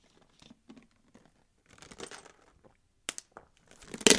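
Ice cubes clatter and clink inside a cup in irregular bursts of sharp, crackly knocks, starting faint and growing louder toward the end, with no voices.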